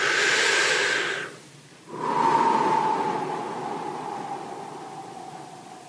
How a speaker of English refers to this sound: Before you walk into any moment of your life, take a deep breath into your belly.